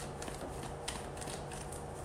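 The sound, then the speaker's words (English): Cards being shuffled, a soft, continuous papery riffle with quick flicking bursts, at low volume, with no talking over it. “So if there's nothing that is significant, I'm going to do this round and then I'm going to shuffle one more time.”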